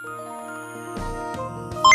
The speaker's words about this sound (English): Calculating computer activated. Computers. Beeps. Spikes. Boops. Scoring complete.